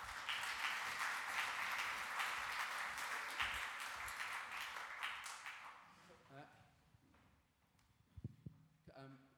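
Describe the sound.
Loud, dense applause from an audience welcoming a psychologist to come and join the speakers, a steady wash of many hands clapping that gradually fades after about six seconds as a few voices begin talking.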